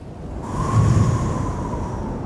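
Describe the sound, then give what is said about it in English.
A steady, broad rush of wind sweeps across open floodwaters, in the story of Noah's ark, with a low rumbling wash and a faint sustained whistle riding on top, swelling slightly then holding for a couple of seconds. “Now, then finally, after 150 days on the ark, God sent a wind.”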